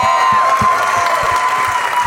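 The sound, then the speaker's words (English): Loud, dense applause from a large audience in New York City as Sarah Silverman comes out, with cheering and whoops rising over the steady clapping throughout. “I try to give everybody a separate round of applause once they're out here.”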